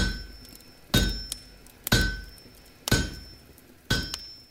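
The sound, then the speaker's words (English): A blacksmith's hammer strikes an anvil four times at a slow, steady pace, about once a second, each blow a sharp metallic clang with a bright ringing tail. It is clear, with no voices. “When he did, he locked his forge to everyone, and for the next 27 nights, the villagers would go to bed to the endless clang of the hammer and anvil.”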